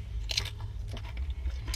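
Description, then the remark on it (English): Crunchy mini tacos from a bucket being chewed, with several sharp crackling bites in quick irregular succession over a steady low hum, no voices present. “Are you at the bottom of your bucket of tacos yet?”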